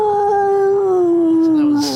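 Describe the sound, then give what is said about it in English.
A single long, loud howl holds a steady pitch and then slowly sinks over two seconds, with a strained, mournful tone like an animal crying out in pain; no speech. “You definitely hear the howl with that.”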